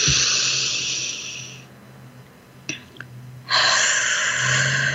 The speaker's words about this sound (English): And just as we connect in, breathing in through your nose, out through your mouth, deep breathing all the way to your toes, this type of breathing brings you present, lowers your stress levels, your cortisol levels, oxygenates your whole body,